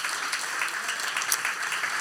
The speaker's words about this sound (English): God is so good. You ought to clap your hands for the goodness of God.